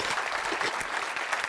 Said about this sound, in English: When you don't feel, I'm waiting while you clap your hands there.